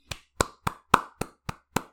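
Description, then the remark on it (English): Seven sharp hand claps in a steady rhythm, fairly loud, each with a quick crack and brief ring. No talking. “Can I do a clap?”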